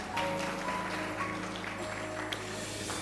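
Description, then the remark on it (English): An audience claps steadily, a dense, even patter of many hands that holds at a moderate level for about three seconds, with a faint sustained tone underneath. “If you want to clap, clap now.”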